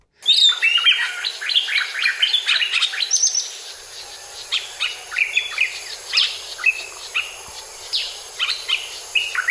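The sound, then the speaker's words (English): Birds chirp and sing continuously, several overlapping high tweets and trills, lively, with a steady hiss in the background and no voices. “That bird tried to kill me.”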